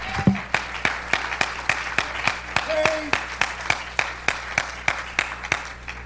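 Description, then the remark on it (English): An audience claps their hands to the Lord in steady unison, with sharp handclaps landing about twice a second in an even rhythm and faint voices murmuring underneath, with reverb. “You ought to clap your hands to the Lord. Will you clap your hands to the Lord?”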